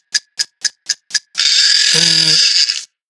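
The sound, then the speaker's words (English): A timer ticks five times in an even, quick rhythm, then bursts into a loud, harsh ringing buzz that lasts over a second before cutting off. No one speaks. “Hang on, let me stop this timer.”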